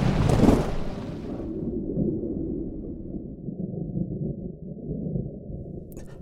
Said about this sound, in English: The powder room blows beneath us just as the waves come crashing down.